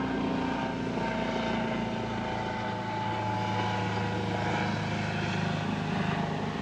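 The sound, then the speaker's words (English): A medical-center helicopter roars steadily overhead, a loud, continuous engine and rotor drone with a droning hum that fills the whole clip, unbroken, with no voices. “It looks like a med-center helicopter.”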